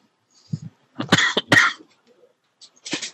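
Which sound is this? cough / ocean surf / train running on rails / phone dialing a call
cough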